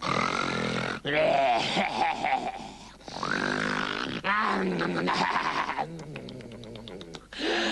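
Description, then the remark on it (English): A wolf snores loudly, with deep, rumbling, growl-like breaths repeating in several long pulses and no talking. “It happened to be snoring.”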